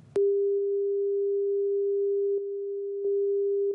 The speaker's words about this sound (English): And now they're beeping out his words on this document, on this press conference.